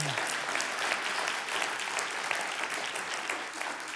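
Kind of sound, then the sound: crowd, audience applause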